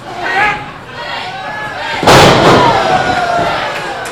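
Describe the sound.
A wrestler crashes onto the mat with one loud, booming slam from a bang buster move midway through, its echo fading into a roaring arena crowd, with indistinct voices underneath.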